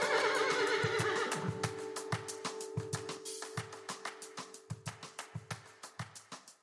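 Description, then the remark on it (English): A horse whinnies loudly for about a second, then steady clip-clopping hoofbeats follow in an even rhythm and gradually grow fainter. No one speaks. “If you'd like to hang around, I shall post-amble at you after the noise of a horse.”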